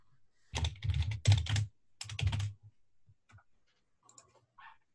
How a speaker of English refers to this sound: So, somebody's typing rather loudly. Sorry, I thought I hit the mute button.